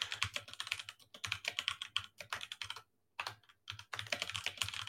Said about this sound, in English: Okay. You got that loud keyboard. All right. It's softer than it used to be. I had a louder one before.